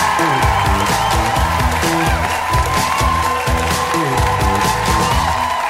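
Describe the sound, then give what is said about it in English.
A crowd cheers and applauds loudly and steadily for several seconds, with whoops over dense clapping while a bass-heavy music track plays underneath, at a comedy show as comedian Joelle Nicole is brought on. “Please give it up one more time for Joelle Nicole!”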